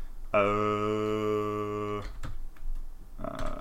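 A steady buzzing tone holds for about two seconds, then stops, followed by a scattering of light, quick keyboard clicks as someone presses the calculator button and types a few keys on a computer keyboard.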